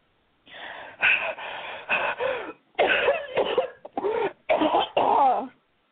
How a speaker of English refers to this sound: she took a hasty puff, blowing out fast and coughing.